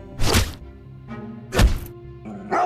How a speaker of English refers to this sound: She uses her own well-trained fists to knock the Riddler and Poison Ivy to the ground.